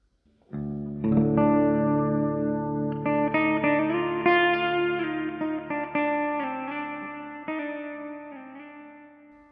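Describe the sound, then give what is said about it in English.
A resonant, buzzing hum of a swarm of bees in the night swells in within the first second, then holds steady with rich overtones and slight shifts in pitch, slowly easing off toward the end. No voices. “a resonant hum beginning below hearing and getting louder.”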